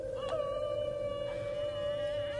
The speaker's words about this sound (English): The wolf!